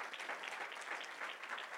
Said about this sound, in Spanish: Denle un buen aplauso al Señor.